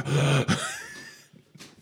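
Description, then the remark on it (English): A voice imitates the heavy, labored panting of a pudgy man running down a hallway: two loud, rasping breaths in quick succession, then trailing off into softer, breathy exhales. “But it's heavy breathing because he's running down the hallway.”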